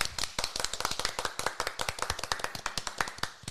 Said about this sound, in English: So again, one more round of applause